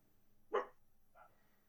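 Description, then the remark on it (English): A dog gives one sharp bark, followed moments later by a softer, shorter yip, against a quiet background with no talking. “There will probably still be some intermediate barking.”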